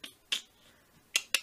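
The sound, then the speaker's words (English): Four crisp computer mouse clicks, short and bright, come at an uneven pace, a single pair early and another pair later, with quiet gaps between and no voices. “No, you're clicking, clicking your mouse.”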